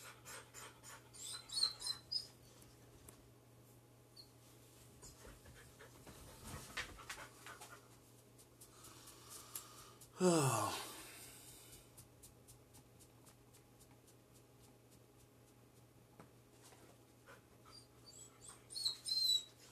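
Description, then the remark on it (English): A pet dog lets out a single short, high whine that slides downward in pitch, with soft panting and shuffling around it and no one talking. “And my dog is crying again.”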